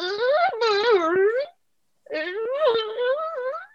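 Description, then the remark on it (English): A person vocally imitates an animal's wailing, growling cry, something between a cry and a growl, in two drawn-out, wavering bursts separated by a short pause, fairly loud, with no other talking. “I had only been there a couple of days when I heard this sort of, it was something between a cry and something between a growl.”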